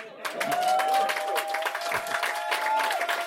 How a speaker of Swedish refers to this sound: För det är så här, vi är på Bonden bar här ikväll. Jag hade tänkt att någon skulle applådera.